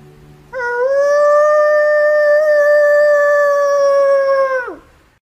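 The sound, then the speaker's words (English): A person's voice imitates a wolf howl: one long, steady, loud tone held for about four seconds, ending in a quick downward slide, with no other talking. “But here's something I might do when I'm out there as far as a howl.”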